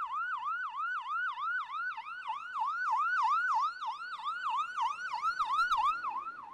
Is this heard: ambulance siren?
yes